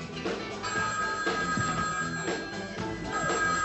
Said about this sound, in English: This episode, we are going to be talking about Ruggero Deodato's Dial Help from 1988. Her phone doesn't stop ringing.